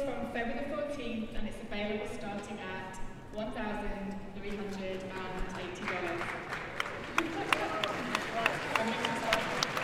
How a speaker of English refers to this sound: There were big reveals. It's a phone that folds. Some varying crowd responses.